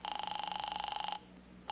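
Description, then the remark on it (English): A telephone bell rings with a fast, trilling electric warble, loud, for about a second before cutting off into quiet. “Well, I'm going to phone her right now.”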